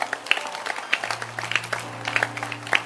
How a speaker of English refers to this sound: So let's clap our hands for our pastors again.